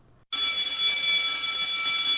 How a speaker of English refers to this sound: Well, there's the bell. The show's over.